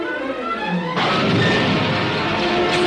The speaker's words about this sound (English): small Star Wars text in the background and zooming, and it's only voiceover of the guy and then TIE fighter explosions, and that's the entire trailer.